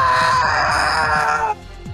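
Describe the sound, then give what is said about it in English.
A loud, eerie, demon-like howling shriek from within the deepest dish holds steady for about a second and a half before abruptly cutting off, leaving a quieter, rumbling background. “You just hear like a demon like shriek from within the deepest dish, like, no!”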